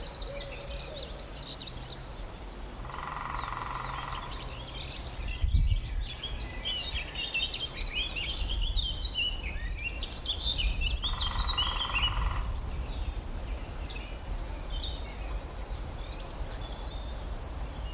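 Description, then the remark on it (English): A lesser spotted woodpecker gives a long, drawn-out call twice, several seconds apart, standing out clearly against a busy background of chirping songbirds outdoors. “Really long drawn out. I don't know. Is that lesser spotted woodpecker?”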